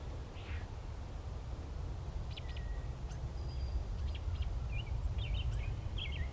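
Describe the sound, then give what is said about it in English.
A bird in a huge marsh gives a string of odd, squeaky, warbling calls over a steady low outdoor rumble. No one speaks. “There's one that was making a really weird noise.”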